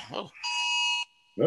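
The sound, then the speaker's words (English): A phone's Amber Alert tone sounds as a loud, steady electronic blare for about a second, with speech just before it and a voice starting again right after. “Amber Alert on my phone.”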